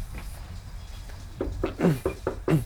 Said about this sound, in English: we give him $20 to knock on his door for 2 hours